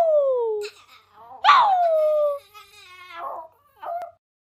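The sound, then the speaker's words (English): A dog howls in a few drawn-out, falling whines, a long one then a shorter yelping cry and a brief final whimper, fairly loud with no talking. “Give them a howl.”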